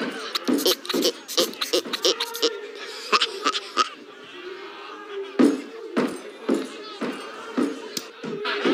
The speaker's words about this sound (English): They just had a bunch of guys sing Barnacle Bill. That's so distracting. In the background.